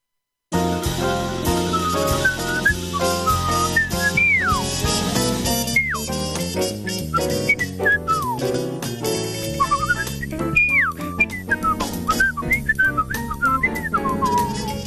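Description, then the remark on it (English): A whistled jazz melody with swooping slides and short trills rides over a full, steady instrumental backing, loud and continuous throughout, with no talking. “Little jazz whistling there.”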